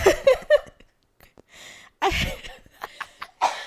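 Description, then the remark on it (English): A person with a head cold coughs repeatedly in harsh, rasping bursts, a quick cluster at first, then a heavier fit of several loud, throaty coughs with short breaths between them. “Also, you guys, I have to cough really bad.”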